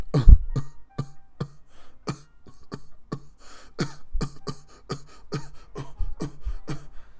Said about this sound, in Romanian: Mă iertați că tot tușesc. Eu cred că am luat un soi de gripă sau ceva în pizna, mă zic, tot tușesc de mult timp. Dar și fumez mult.